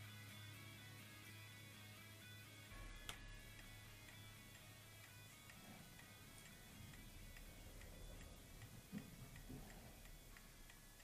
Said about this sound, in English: It's just a ticking clock, so we'll stop there.